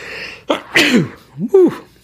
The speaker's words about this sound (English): Excuse me there. I've never sneezed on a podcast, so mark that down. Sneeze number one. Hopefully that did not blow your eardrums out in your car.